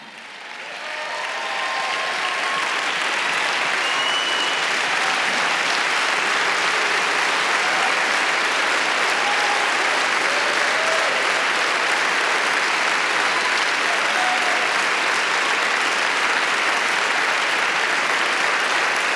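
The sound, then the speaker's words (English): A large church audience breaks into sustained, dense clapping that swells within the first couple of seconds and holds steady and loud throughout, with occasional faint cheers and voices mixed into the applause. “You're clapping, but I hear the sound of rain and revival.”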